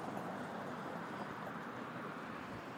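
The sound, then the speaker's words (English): A steady, unbroken wash of street traffic noise, a broad rumbling hiss at constant level for a few seconds with no distinct passing vehicles and no voices. “I'm on the streets. You hear the traffic.”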